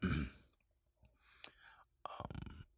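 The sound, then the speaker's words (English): A throaty cough bursts out at the start, followed by a few quiet breathy clicks and a second rough, throat-clearing burst near the end. “Working on a studio and a little tickle in my throat as I feel myself about to cough.”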